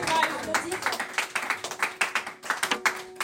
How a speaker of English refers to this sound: Or if I were you, I'll clap my hands and give God praise.